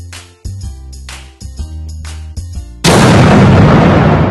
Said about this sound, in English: I'm controlling the jingle.